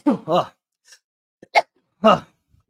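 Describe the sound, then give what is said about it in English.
A stifled sneeze: a few short, sharp breathy bursts with brief pauses between them, the last one the loudest, and no talking around it. “I had a sneeze there.”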